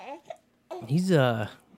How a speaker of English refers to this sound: Just pretend he's not crying in the other room, you know? No, I appreciate that you have him right there with you, and you got contact with him. That's super important to infants, so good on you. You're not bothering me any by having him around.